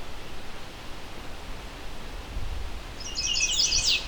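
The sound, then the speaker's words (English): A short, high song phrase of quick chirpy notes from a chestnut-sided warbler, a fairly abbreviated version of its song, arrives near the end, rising out of a steady hiss of outdoor background noise with a low rumble underneath. “This bird may be migrating and may be on territory.”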